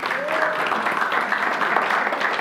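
An audience during a sermon breaks into a round of applause for a man who brought something up to the preacher: dense, steady clapping that holds at an even, fairly loud level for the whole moment, with no voices over it.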